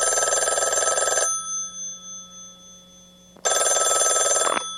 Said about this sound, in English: it was a beautiful duet, kind of a sad song, and it kicks off with a phone ringing.